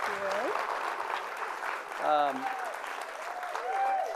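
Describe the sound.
Steady audience applause, a dense wash of many hands clapping throughout, with scattered cheers and voices calling out over it.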